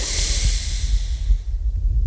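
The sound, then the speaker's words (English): A single slow, airy inhale through the nose during a mindful breathing exercise, a soft breathy hiss that tapers off after about a second, with a faint low rumble underneath and no talking. “I'm aware of myself breathing in.”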